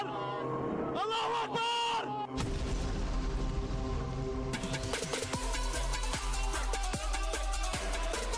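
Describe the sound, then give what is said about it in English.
A loud explosion sound effect: a deep, roaring blast that swells into sustained rumble, followed by a flurry of sharp crackling pops, with brief shouting voices just before the blast. “Smoke from a cigar, it actually makes it seem like the explosion yeah. happened.”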